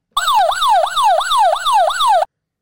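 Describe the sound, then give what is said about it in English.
An alarm sound effect plays alone: about six quick, loud falling tones repeat in a steady, regular rhythm, each sweeping downward in pitch like a siren. “why don't you like sound the backup alarm?”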